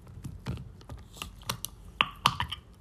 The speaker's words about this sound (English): Hold up, I'm opening my water.